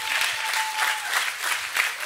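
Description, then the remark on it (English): A crowd applauds steadily, a dense wash of many hands clapping at once, fairly loud and sustained throughout with no voices standing out. “Give them a big old clap one more time.”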